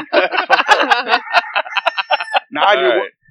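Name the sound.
chicken clucking sound effect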